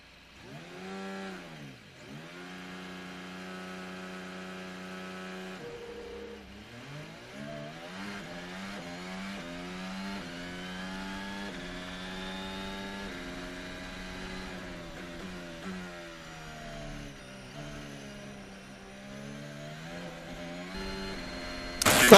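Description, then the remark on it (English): A race car engine revs loudly and continuously on the starting grid, its whining pitch dipping, then repeatedly climbing and falling as the throttle is blipped, ending with a sudden sharp burst. No voices. “Last car is now approaching the back of the grid.”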